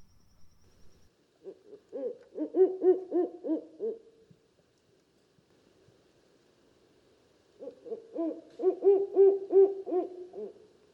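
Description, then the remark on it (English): A Mexican barred owl gives two long bouts of rhythmic, wavering hoots, each a rapid series of notes rising and falling, separated by a few seconds of quiet; the calls are clear. “Here's the Mexican barred owl calling.”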